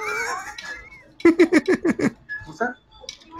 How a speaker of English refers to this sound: I can't believe you brought my dog to the supermarket. I mean, I can only imagine the looks you get whenever my dog talks.